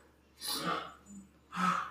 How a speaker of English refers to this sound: If you hear our dog having a heart attack out there, he's been having coughing fits. Sorry. He's fine. Don't worry about him. That was a loud one.